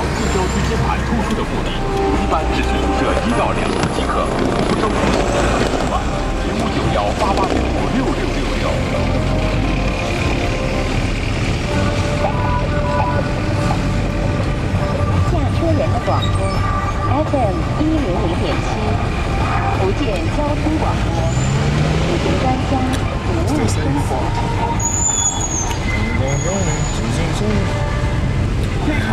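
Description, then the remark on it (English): Steady low engine rumble and road noise heard from the front seat of a taxi moving through traffic in China, with traffic sounds around it and occasional faint high tones, continuous and fairly loud throughout. “And I'm sitting in the front of the taxi.”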